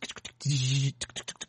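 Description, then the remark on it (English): A voice mimics a typewriter: a quick run of sharp clicking clacks, a half-second sustained buzzing hum in the middle, then another burst of rapid clacks. “I hear his typewriter like...”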